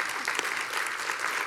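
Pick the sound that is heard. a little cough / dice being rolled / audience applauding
audience applauding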